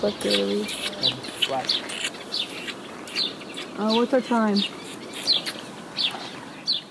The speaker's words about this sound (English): You can hear perhaps some of them. What's that singing? The green finches. Green finches, yeah, the green finches.